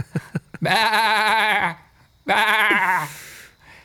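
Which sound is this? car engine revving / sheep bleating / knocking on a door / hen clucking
sheep bleating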